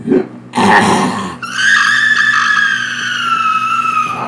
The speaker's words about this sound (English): What is going on back here with that woman screaming like that?